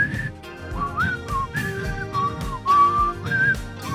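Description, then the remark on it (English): A person whistles a wandering, bright melody, the pure notes gliding up and down over a steady instrumental backing, moderately loud throughout. “I stroll with my hands in my pockets, whistling sweet tunes of nothing.”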